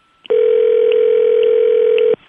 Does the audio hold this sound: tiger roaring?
no